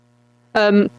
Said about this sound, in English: Sorry, I'm getting a bit of interference.